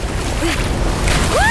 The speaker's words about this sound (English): And here comes the last wave of the competition. Whoa! You guys! It's a pretty gnarly one!